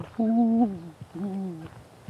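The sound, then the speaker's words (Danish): Two low, soft cooing notes from a dove, each drawn out for about half a second with a short pause between, clear against a quiet outdoor background. “Og duer.”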